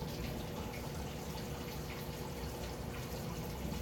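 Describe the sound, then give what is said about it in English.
Steady trickling and splashing water from two small recirculating waterfalls, a little pump fountain and a tower garden being restarted, a continuous babble with faint dripping textures and no pauses. “You're listening to two waterfalls. One is my little pump fountain, and the other one is my tower garden, which I am restarting.”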